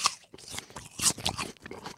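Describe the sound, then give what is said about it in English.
Crisp crunching of someone biting into a Sweet Tango apple, with several loud juicy bites and chewing crackles over about two seconds, no talking. “And you might think it's rude to crunch an apple while recording a podcast ad.”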